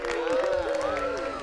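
A large crowd roars and cheers, many voices shouting and whooping together in a dense, sustained wall of sound that holds steady for the whole moment.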